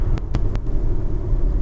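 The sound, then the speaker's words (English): A car engine rumbles steadily from inside the vehicle while driving in traffic, a low continuous drone, with three quick sharp clicks near the start and no talking. “He could run over my car in that thing.”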